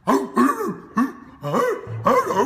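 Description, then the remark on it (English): Alex Jones imitates a barking dog in a video captioned Ruff Ruff Jones: roughly five short, gruff woofs with rising-then-falling pitch, loud and in a slightly uneven rhythm, with no other speech. “Yeah, he's pretending to be a dog in that.”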